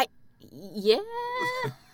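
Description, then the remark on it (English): A single drawn-out moo from a toy moo can, rising in pitch and then holding a steady, slightly nasal tone before cutting off. Clear, with no talking over it. “But the mooing can”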